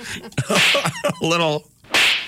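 A voice imitates a slap, with a sharp hissing burst, a short voiced sound, then a second loud hiss-like crack near the end, all loud.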